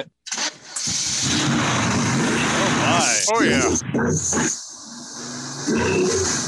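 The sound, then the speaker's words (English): A car engine cranks and catches, then settles into a loud, steady rumble that carries on throughout, with a couple of brief exclamations from a person over the running motor. “And of course, I can start it up for you if you want. So you can hear the engine. Does it rumble?”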